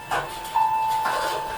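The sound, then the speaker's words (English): An elevator arrives with a single clear, mid-pitched chime held for about half a second, framed by soft breathy hissing as the doors slide open. “Elevator! Let's go in the elevator, quick!”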